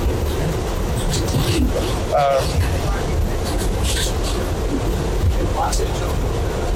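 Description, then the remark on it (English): A train rumbles steadily along the rails, a dense, continuous roar with low clatter throughout, while faint indistinct voices murmur beneath the noise. “Is it the train that then that's going down?”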